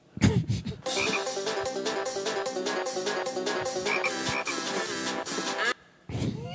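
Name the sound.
frogs croaking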